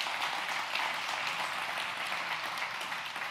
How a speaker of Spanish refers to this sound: ¿Cuántos están de acuerdo conmigo? Le pueden dar un aplauso a Dios por eso.